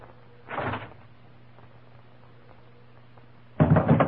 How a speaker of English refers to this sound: We'll open the door. Throw in our gun.